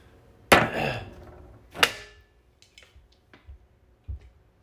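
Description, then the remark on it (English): Two loud, heavy thuds of something banged on a table, the first ringing out briefly, followed by a scattering of softer, uneven knocks and taps. No voices. “It's like the eighth time you've banged things on the table.”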